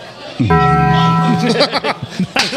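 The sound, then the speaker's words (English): A deep, resonant bong chime like the Taco Bell sound effect rings out once, loud, sustaining for about a second before voices start talking and laughing over its fading tail. “Taco Bell. Perfect.”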